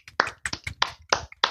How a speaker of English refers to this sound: I didn't sign up to this. You're supposed to clap, guys.